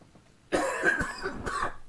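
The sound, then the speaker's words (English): A short burst of raspy coughing from a person with a lingering cough after COVID: several rough hacks in quick succession with a throaty edge, starting abruptly after a brief quiet moment. “I still getting this little cough.”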